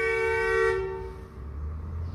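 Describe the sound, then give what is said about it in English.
A car horn blares in a single steady honk for nearly a second, then cuts off, leaving a low rumble of traffic in the background. “Thank you, random car horn.”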